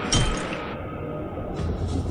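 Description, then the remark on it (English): A wine glass cracks under a crustacean's strike with a sharp glassy snap right at the start, then brief rattling and handling noise, with a second, softer knock near the end. “Can easily break quarter-inch glass.”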